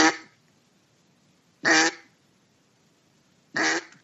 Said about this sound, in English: There's I'm having a good time, I'm nice and lazy in the marsh, repetition of quacks.